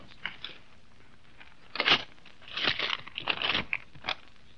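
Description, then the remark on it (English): A paper telegram scrapes and crinkles as it is pushed under a door, a few dry rustling bursts with short pauses between them and no voices. “Telegram. Oh. Shove it under the door, will you?”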